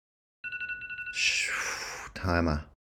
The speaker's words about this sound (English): Timer. I guess it's time for Fighter of the Year. That's what my phone's trying to tell me. I forgot why I set that timer.